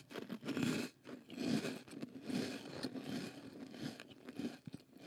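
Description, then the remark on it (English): Crunching of a crisp snack being chewed close to a studio microphone for ASMR, with repeated bites and grinding mastication in an irregular rhythm for several seconds, loud with no talking. “If you got a cracker beside you, you got something to munch on.”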